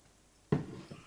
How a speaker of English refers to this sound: I'm going to drink some water first.